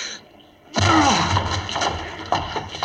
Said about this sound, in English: The door's locked. We can't get in. Break it down, then. Help me, Watson. One, two...